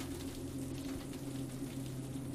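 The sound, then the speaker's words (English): Steady rain falling, a soft continuous hiss and patter at an even level, over a low, constant droning hum with no pauses or voices. “The rain continues to fall, and the 20th Century Limited, like a silver bullet, travels through the blue-black darkness beneath a sky of charcoal gray clouds.”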